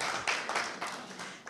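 An audience applauds steadily, a dense wash of many hands clapping at a moderate level. No voices can be heard over it.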